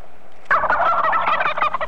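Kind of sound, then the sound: bird, turkeys gobbling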